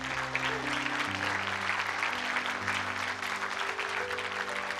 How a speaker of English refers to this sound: Church, give them a big round of applause.